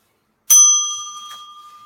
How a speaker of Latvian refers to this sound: Man patīk tas zvaniņš.